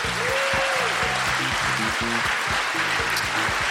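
A crowd applauds steadily for several seconds, a dense, even wash of clapping with no voices, while a low, repeating tonal pattern, like music, sits underneath.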